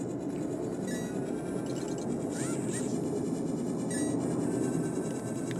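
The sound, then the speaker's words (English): A loud jet aircraft roars overhead in a steady, unbroken rumble that holds the same level throughout, with faint high whistling tones rising briefly partway through. “I apologize if you hear that background noise. It's a very loud jet.”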